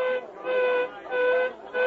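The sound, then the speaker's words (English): A mine whistle blows to signal an accident in the pit, in a series of loud, steady blasts, about four short pulses with brief gaps, each a bright, reedy tone with rich overtones, with no voices. “And then one evening as I returned home, I heard the whistle at the mine. The whistle that meant only one thing to us. Tragedy. An accident.”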